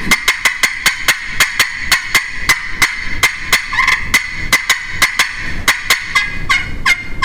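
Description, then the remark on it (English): A rapid, excited run of turkey hen yelps made on a turkey call: dozens of sharp, raspy notes in a fast, steady rhythm, loud, with no talking. “probably one of the best I've ever heard at like Excited Hen Yelping and Yelping.”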